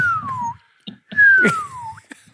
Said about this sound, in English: The whistling. What happened to it?